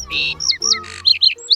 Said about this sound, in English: Hello, bird.